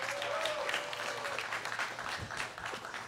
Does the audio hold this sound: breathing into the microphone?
no